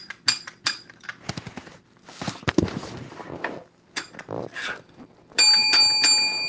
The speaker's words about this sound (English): The bell has rung, yes.